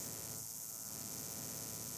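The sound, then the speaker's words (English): A steady hiss of electrical static heard in headphones while recording at Point Sur, a fairly quiet, unbroken buzzing noise with no voices and no change in level. “Would you mind stopping the static?”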